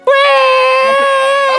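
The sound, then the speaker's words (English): A voice lets out a loud, sustained, high-pitched crying wail that holds one steady piercing note for over a second, imitating the shrill whistle of a boiling tea kettle. “And started to cry like a girl tea kettle.”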